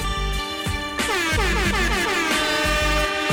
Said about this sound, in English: See if I still have my air horn.